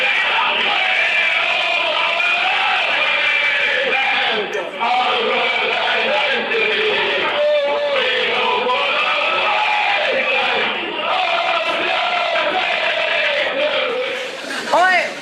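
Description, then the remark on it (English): A football crowd at a match, recorded on a mobile phone, chanting and shouting, a loud, continuous roar of many voices with rising and falling tones, sustained for about fifteen seconds with a brief dip midway. “Someone got this on their mobile phone and we had to track it down of me at a football match.”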